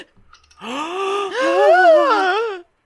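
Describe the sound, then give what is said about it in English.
A single drawn-out dramatic gasp, voiced as a long wavering 'aah' that swells and dips in pitch for about two seconds, fairly loud, with no other sounds around it. “Gasp.”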